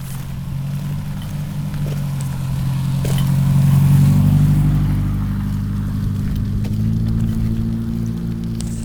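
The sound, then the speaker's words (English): A car approaches and passes, its low engine rumble swelling to a peak midway before easing off, with a steady hum lingering under light background noise. “Here comes a car.”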